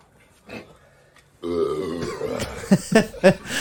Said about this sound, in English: And like, first one's not bad. No, first one gets down all right. And then the burping starts.